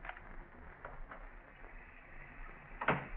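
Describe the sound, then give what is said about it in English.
A door opens: a few soft clicks and rattles of the handle, then a sharper knock as it swings open near the end. No one speaks. “Shoot, if I have to open that door and go to the garage.”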